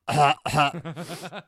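Two raspy coughs burst out loudly from a person who has been smoking heavily, followed by a short run of throaty, chuckling vocal sounds, all from a single person with no speech.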